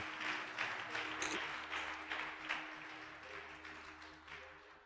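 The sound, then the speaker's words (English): An audience claps together as a clap offering to the Lord, in sustained, dense applause lasting several seconds, steady and full, with a low musical hum and tones continuing underneath. “Can we give a powerful clap offering to the Lord?”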